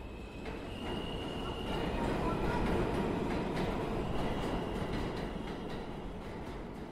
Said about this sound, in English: And the elements were really great for it, and here I was hopping on this metro car and taking it underground instead.